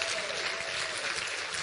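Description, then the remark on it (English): An audience claps steadily, dense applause from many hands filling the room at a moderate, even level for the whole short stretch. “Give him a clap.”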